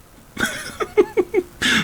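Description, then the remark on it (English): Someone clears their throat: a harsh raspy burst, then three short guttural grunts in quick succession, ending with another rough, breathy rasp. “Yeah, just be careful clearing your throat.”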